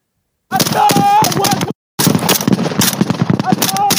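Loud, rapid bursts of gunfire crackle almost nonstop from a video of shooting at officers, with a brief pause partway through before the shooting resumes, and what sound like raised voices mixed into the din.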